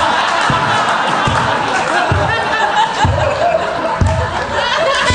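Slow, evenly spaced claps, about six, land roughly once a second over a constant roar of crowd chatter and scattered laughter, giving a mocking, sarcastic applause.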